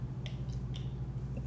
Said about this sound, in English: Let me sip my water first.